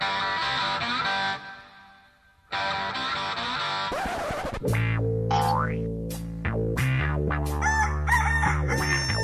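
A rooster crows twice, then a string of cartoonish boing sound effects bounces in with rising and falling pitch, loud, layered over a dense sustained background.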